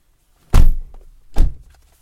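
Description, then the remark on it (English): Two car doors shut one after the other as people get into their car, each a loud, solid thunk with a deep low-end thud and a brief rattling tail, spaced under a second apart with no talking. “We get into our car.”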